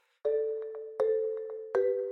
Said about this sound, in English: But he will have to run for his life, because as soon as he is out of the shelf, the alarm begins to sound in the night. A strident ringing that rips through the silence.